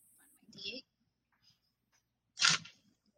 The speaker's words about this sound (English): Just dump out the rest of my dice.